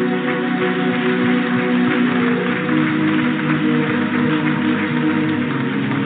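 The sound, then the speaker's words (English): A crowd claps steadily and densely for the Lord for about six seconds, a loud, even wash of applause with sustained musical tones holding underneath. “Oh, give the Lord a clap.”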